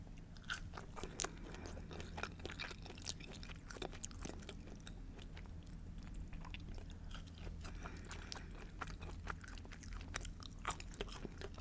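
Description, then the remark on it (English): Steady chewing of reheated French fries with ranch and buffalo sauce, with frequent moist smacks and small crunchy clicks repeating throughout, heard alone over a low background hum with no talking. “Aren't crunchy anymore. I reheated it.”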